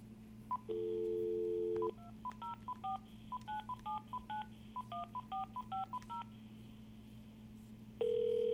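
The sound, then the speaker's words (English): A phone line tone sounds, then a quick run of about twenty short touch-tone beeps at varied pitches as a number is dialed to call Sean Carter (Jay-Z), followed by a steady ringback tone starting up, over a low constant hum. “Maybe I will give Sean Carter a call.”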